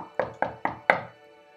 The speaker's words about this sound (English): The monk knocked.